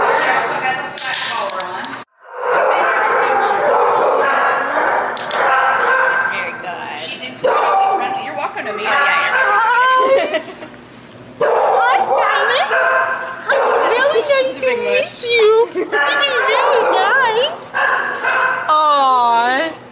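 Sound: dogs barking and yipping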